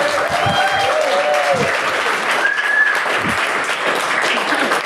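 An audience claps steadily for about five seconds, a dense, even wash of applause with a few faint whoops and cheers rising through it.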